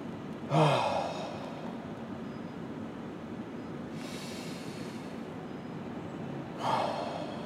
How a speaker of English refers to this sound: Heavily breathing in and retaining in their little lungs the delicious aromatic sensations of the living bouquet I'm gonna put in front of them.